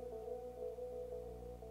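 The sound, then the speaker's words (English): A steady electrical buzz hums from a distorted electric guitar signal, unchanging and fairly quiet, with a constant tonal drone and no playing or talking over it. “There's definitely a buzz going on now.”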